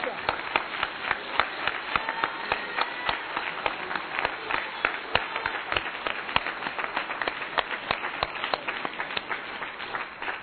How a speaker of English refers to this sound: Let's give the Lord a hand clap of praise at it.